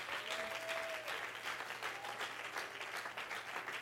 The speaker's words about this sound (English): Oh, I wish if you believed it today, you would clap your hands with all of your might and you would shout unto the God who does great things.